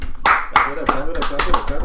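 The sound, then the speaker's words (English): A series of sharp hand claps celebrating a marriage of nearly two years, around eight or nine in a fairly steady rhythm that quickens toward the end, with voices talking underneath. “Clap it up. Keep it going, cause marriage.”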